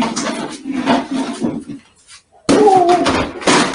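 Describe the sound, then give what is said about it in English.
Rustling and shuffling, a brief near-silence, then a sudden loud crash as an object is pushed off and hits the floor, with a short ringing clatter trailing after the impact. “So I'm putting it on the floor. Put it on the floor. Push it off.”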